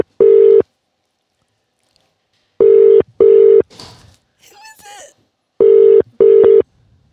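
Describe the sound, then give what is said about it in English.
Loud ringback tone of an outgoing phone call, buzzing in repeated double bursts with pauses between pairs, while faint voices and murmuring fill one of the gaps. “It's ringing.”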